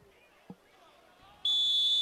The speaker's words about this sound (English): Well, at least the microphone works for the whistle blow. Fifth penalty today for Eastern Kentucky.